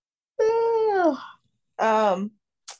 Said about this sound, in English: Oh, shot. Yeah, I'm sorry, y'all. I'm tired as hell. Yeah, But we know because you yawned the fuck into this thing.